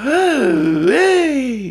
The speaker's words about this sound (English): He's still alive. Thank God. I thought I killed him. You almost made me kill him. Look, he's gasping for breath.